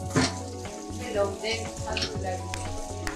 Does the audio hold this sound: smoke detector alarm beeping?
no